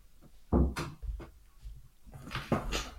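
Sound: door being shut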